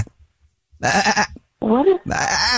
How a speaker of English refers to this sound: What is happening? Why do I hear like a goat or something? I don't understand what is going on.